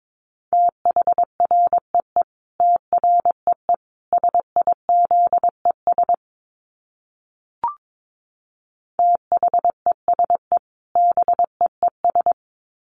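Morse code sent at about 22 words per minute: a steady mid-pitched tone keyed in quick dots and dashes, two runs of characters split by a silent pause with a single click.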